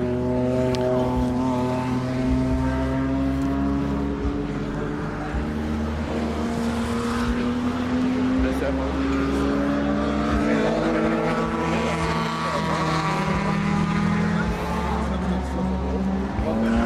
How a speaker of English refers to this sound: I love that engine though.